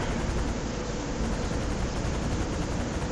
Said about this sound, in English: I think it's that helicopter. Alright, whoever's on the server probably has some pretty bad internet, because I can hear a helicopter flying overhead, and the helicopter's causing my game to lag.